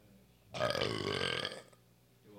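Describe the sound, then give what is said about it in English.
A single loud burp-like throat noise lasting about a second, which the body produces when an expected burp does not come out, rough and gurgling with a wavering low pitch, rising suddenly and then cutting off, with quiet before and after. “Yeah, it only happens as, like, if I think I'm going to burp and I don't, and then my body just produces that, but because it's anticipating a burp, but it didn't come out.”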